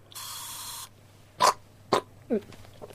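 A throat spray lets out one steady hiss lasting under a second, followed by two sharp throat-clearing bursts and a brief voiced grunt.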